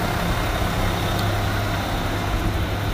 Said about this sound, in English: Excuse me, there's a garbage truck.